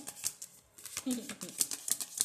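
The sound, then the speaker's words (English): A deck of cards is shuffled for a card reading, a quick run of crisp papery flicks and riffles for a couple of seconds, with a faint murmur of voice briefly underneath. “But I gotta shuffle. I gotta hear the shuffle.”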